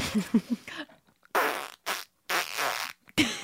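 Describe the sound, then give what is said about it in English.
A person imitates a fart with their mouth, a few short buzzy voiced blurts followed by several longer raspy, sputtering bursts separated by brief silences, fairly loud. “Was it, what was the delivery? Not of the, not of, not the from fart, the butt, the fart but like. Sounded like this.”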